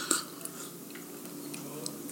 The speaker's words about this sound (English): And so our first sip today is some Dominican roasted coffee, my friend. So this is almost fresh off the vine, it right?